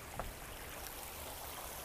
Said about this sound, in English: I'm sorry if it's kind of loud. I'm standing in the middle of a river.